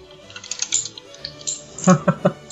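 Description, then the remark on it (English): Fast clacking of a computer keyboard, a steady patter of keystrokes ending in a few harder, louder taps, with a faint voice murmuring underneath. “Sorry if the keyboard is clacking like crazy.”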